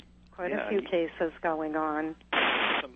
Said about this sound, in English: It keeps squawking. Well, it's pretty severe weather out there, too. Yeah, it's probably just weather interference.